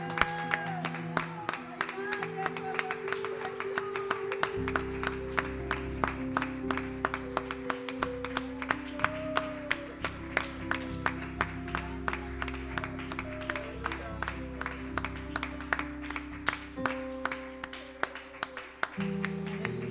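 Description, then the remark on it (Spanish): An audience claps loudly and steadily for the Lord during worship for the full twenty seconds, sharp claps layered over sustained low keyboard or organ chords, with voices faintly mixed in. “Démosle un aplauso al Señor, pero con todas sus fuerzas, porque Él es el que se lo merece.”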